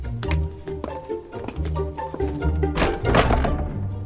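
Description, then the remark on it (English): The heavy front door of Lord Bearstead's house shuts with a series of deep, solid thunks and some rattling, followed by a brief burst of broad rushing noise near the end. No one speaks. “I would love to go in through the front door.”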